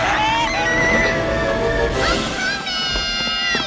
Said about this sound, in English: Here you hear Sarah's scream, and here she comes.